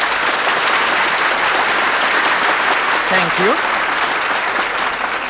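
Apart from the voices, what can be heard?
studio audience applause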